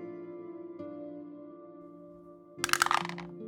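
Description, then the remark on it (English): A six-sided die, rolled to decide a creature's size in a game, clatters and tumbles briefly across a hard surface with a quick burst of sharp clicks and lands on a 6, over a steady low musical drone. “Moving on to the creature's size, we'll be rolling a 6-sided dice.”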